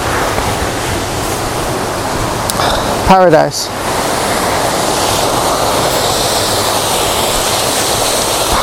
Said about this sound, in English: Waterfall City. And this place is cooler than I remember. Much cooler. So there's the main waterfall there, and there's lots of smaller waterfalls heading down the valley.